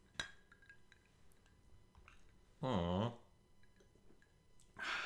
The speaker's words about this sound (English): I spilled. I have a drinking problem. That's what I get for drinking before 5 o'clock.